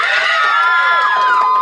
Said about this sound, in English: You're cheering for death. Think about that. You're cheering for death.